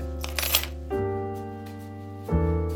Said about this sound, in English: The sound of the deadbolt opening and then that sound of pushing the door open, those are sounds I've always known.